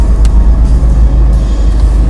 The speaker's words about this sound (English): Oh man, see, car pulled up behind me.